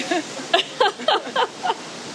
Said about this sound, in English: It's quite windy out here today.